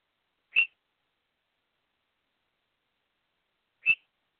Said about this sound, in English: birds, no more screaming.